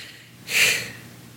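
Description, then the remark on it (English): A person imitates heavy respirator-style breathing: one hissing, breathy exhale about half a second long, alone with no talking around it. “You were just doing like a... You just did like a little... Darth Vader. You're doing like this.”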